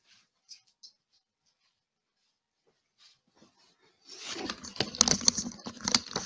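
After a few near-silent seconds with faint clicks, a dog starts making busy noises: scratchy snuffling and rustling mixed with high little squeaks, continuing to the end.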